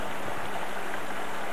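A steady rush of stream water flowing out of a lake into another lake, a continuous bright splashing hiss with no pauses, heard on its own without any voices.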